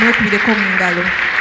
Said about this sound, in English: So I want to welcome all of you in the name of the Lord. Clap for yourself.